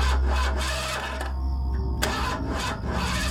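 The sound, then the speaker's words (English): A car engine cranks over and over without catching, a rough, repetitive grinding whirr over a steady low rumble. There are no voices. “Why won't it start? That sounds like the battery.”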